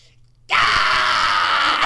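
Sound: imitated scream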